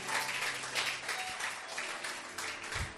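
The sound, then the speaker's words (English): A church audience applauds the pastor and his wife steadily, dense overlapping claps forming a bright, sustained wash of sound at moderate volume, with a faint low thump near the end and no speech over it. “So a better clap of him for Pastor and Mrs.”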